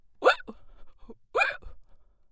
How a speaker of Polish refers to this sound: Czkał cichutko, ale było w tym jego czkaniu coś nowego. Czkał już nie tylko ze strachu, lecz by dodać sobie odwagi. Jego czkanie było pierwszą wskazówką zmian, które miały ukrócić szarogęszenie się kalafiora.